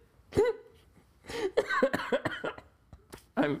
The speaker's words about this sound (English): I'm laughing so hard I'm coughing like my grandma who is gone to be with Jesus.